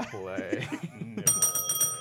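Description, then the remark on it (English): A voice speaks briefly, then a bright, metallic bell rings in a quick burst of several rapid strikes, fairly loud, its shimmering tone sustaining through to the end. “The bell represents the proverbial nut, as it were.”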